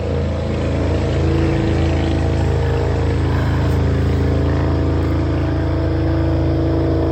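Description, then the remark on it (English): A motorcycle passing by, its engine droning loudly and steadily, a rough, constant roar with a low buzzing hum and no clear rise or fade. No one speaks. “Here comes a motorcycle.”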